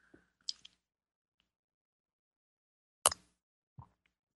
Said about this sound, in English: It's time for me to have a sip of my tea here. My yummy rainforest tea.